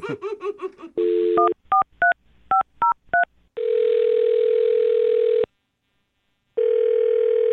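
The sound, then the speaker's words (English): A brief burst of laughter, then a woman's phone number is punched in on a radio morning show as a quick run of about seven touch-tone beeps, followed by long, steady ringing tones with a pause between them. “Well, I'll dial her phone number right now and get her on the phone then.”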